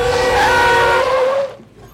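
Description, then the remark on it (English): A car brakes hard behind a stopping truck on a San Francisco street, with a loud tire screech: a high, wavering squeal over rumbling road noise that lasts about a second and a half, then cuts off abruptly. “You didn't see the truck stopping?”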